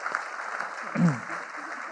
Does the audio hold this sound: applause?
yes